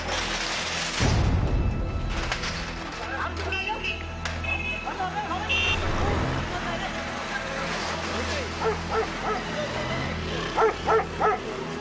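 A dog barks and whimpers amid a noisy, cluttered background in a dangerous area where a massive shelf has collapsed, with a heavy thump near the start and a quick run of short, yelping barks toward the end.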